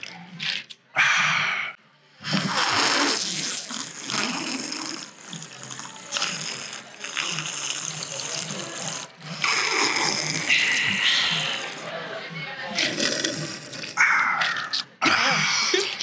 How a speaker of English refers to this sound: We are thirsty. Good water out the good, loyal, and true cup.